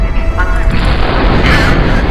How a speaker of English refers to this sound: Ground collapse in the ERV.